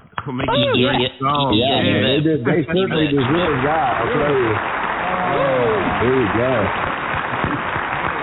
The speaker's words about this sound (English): Let's give all the guys a nice hand, a clap.